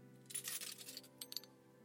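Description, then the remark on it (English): A bunch of keys on keychains is picked up, giving a burst of jingling metallic clinks and rattles, then a few brief separate clinks as the keys settle. No one speaks. “I will pick them up.”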